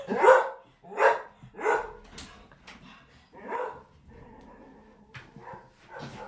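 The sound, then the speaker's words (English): A dog barks repeatedly, four sharp loud barks in quick succession followed by softer yips and whines, with another bark near the end. “I'm not happy with that dog guy.”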